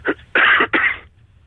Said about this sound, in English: Oh, lordy. Oh, dear, that's a cough, isn't it?